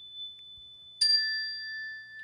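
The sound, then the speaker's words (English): A single bright phone ding strikes about a second in and rings on with a steady, clear tone that lingers to the end; otherwise the surroundings are quiet, with no talking. “But you have a ding on your wow, on your phone, right?”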